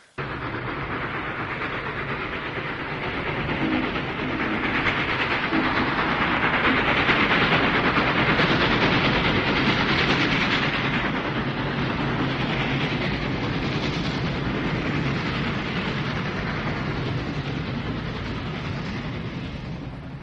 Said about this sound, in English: Right, that's me on the train.